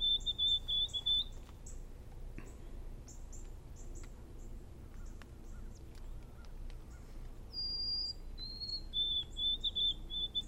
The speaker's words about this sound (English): So here it is, white-throated sparrow. Real clear whistles. You'll think it's the neighbor, and these guys are getting into hyperdrive singing. Let's listen to another white-throated sparrow.